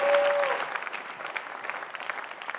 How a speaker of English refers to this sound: Let's praise God with a clap offering.